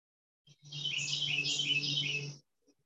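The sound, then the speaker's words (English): A bird calls loudly in one dense, chattering burst lasting about two seconds, with a low steady hum underneath and quiet before and after. “So I just saw the thought, that bird is loud.”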